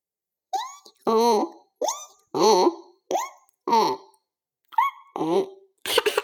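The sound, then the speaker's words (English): A voice imitates a donkey's bray in repeated bursts, alternating high squeaky rises with lower wavering, honking tones in a hee-haw rhythm, fairly loud and with short pauses between calls. “I can do an impression of a donkey.”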